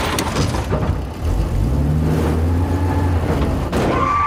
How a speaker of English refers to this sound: And Jane knocks out Thor again by backing the Jeep into him after he breaks out of the hospital.